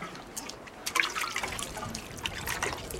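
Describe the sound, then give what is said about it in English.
Water splashes and trickles as children draw water from a borehole and pour it, with scattered drips and small pours coming in an uneven rhythm, fairly quiet against a soft background. “Next morning, the children brought water from a nearby borehole.”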